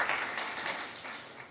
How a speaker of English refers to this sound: Let's give the Lord a hand clap of praise for people's lives being changed.